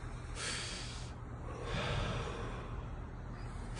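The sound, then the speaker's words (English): Two long, deep breaths demonstrated in preparation for sun gazing, each a loud, airy rush of air with a brief pause between them, heard alone with no talking. “Thanks for showing us how to breathe.”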